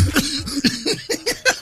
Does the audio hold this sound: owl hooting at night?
no